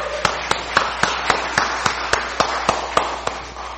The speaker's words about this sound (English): Let's just give our choir a round of applause, please.